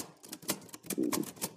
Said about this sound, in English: Matter of fact, I'm not even gonna do it on my computer. I'm gonna type it out in my typewriter.